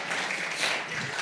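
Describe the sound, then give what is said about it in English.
A short burst of applause from an audience, many hands clapping together in a dense, steady patter at moderate volume for about a second. “This is actually a really hard word for me to say as a German, so I think I deserve a little clap here from you guys.”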